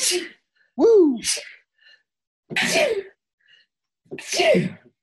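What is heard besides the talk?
repeated sneezes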